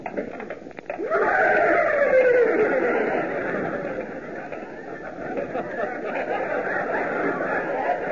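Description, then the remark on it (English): Men's voices imitate horse whinnies, a loud, wavering descending cry near the start followed by several more overlapping neighing calls and chatter, sustained throughout. “You look almost like horses, boys.”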